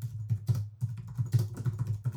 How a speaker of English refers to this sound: You ready for some keyboard input?